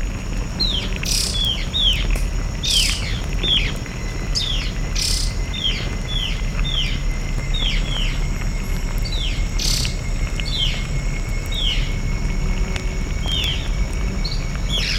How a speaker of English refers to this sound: And the calls of the ant birds.